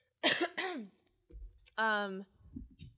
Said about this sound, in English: I have to cough again.